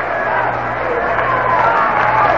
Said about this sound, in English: Fans trying to get something started here as they start to clap.